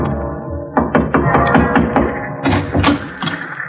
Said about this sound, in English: I knocked on the door for a good minute before it finally opened.